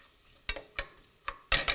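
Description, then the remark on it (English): Half a cup each of diced onion and celery cook in a couple tablespoons of grease in a pot to soften, stirred with four or five short scraping clatters in a loose rhythm, the last two louder, over a faint, quiet sizzle. No one speaks. “And now we're gonna put in a half a cup of diced onion and a half a cup of diced celery. And just cook this until it starts to soften.”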